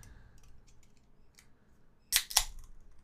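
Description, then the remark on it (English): A can of 4% alcohol beer, 1.2 standard drinks, is cracked open: two sharp, bright metallic snaps in quick succession, the second followed by a short fizzing hiss, after a few faint clicks and rustles. “So this is 1.2 standard drinks at 4% alcohol. Okay. Let's hear the crack.”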